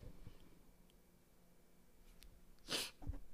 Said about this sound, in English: I thought I had to sneeze. Don't you know how, like, your nose is, yes, like, you about to sneeze? Yes. It was, like, right there. Right there.